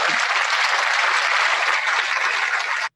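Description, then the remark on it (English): Loud, dense applause from many hands, a steady crackling wash of clapping that holds level for about three seconds and then stops abruptly. “The applause really kicks it off.”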